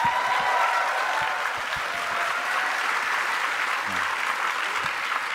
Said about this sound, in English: Can we have a round of applause before I do intros?